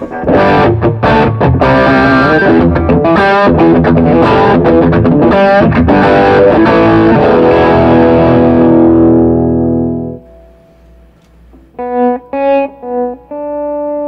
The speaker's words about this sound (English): So I definitely have like a lot of gain going on, but it's not distortion. It's just like compressed overdrives, I think.